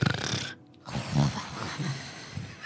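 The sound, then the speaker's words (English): Someone mimics snoring with rough, rasping breaths, fairly loud, broken by a short silent gap before the throaty snorts resume. “She looks like a snore.”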